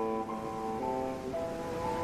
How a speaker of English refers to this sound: I awoke on the edge of the cliff, the waves crashing below.